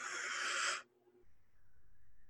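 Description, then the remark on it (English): A short, breathy half yawn: a loud airy rush of breath lasting under a second that cuts off abruptly, followed by quiet low murmuring. No speech. “Now, like, I want to yawn.”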